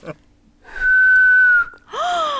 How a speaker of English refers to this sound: learned to whistle without using her tongue